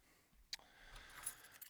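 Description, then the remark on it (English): Keys jangle and clink as someone fiddles with them, a short burst of quiet metallic rattling with a couple of brighter chinks standing out, no voices over it. “Those goddamn keys away.”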